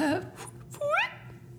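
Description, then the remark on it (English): A voice makes a mouth-made fart noise: two short voiced bursts, the second with a rising, wobbling pitch, fairly loud, with no words spoken. “should we just do the fart noise? Is that the thing to do?”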